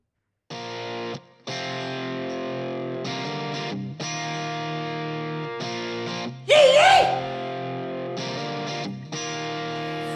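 A new country single starts up with loud, sustained, distorted guitar chords played in choppy blocks with short breaks, a brief squealing, swooping lead burst partway through, and no vocals yet.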